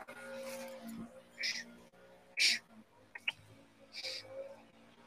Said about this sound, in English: She's freaking out. The rally dog is freaking out.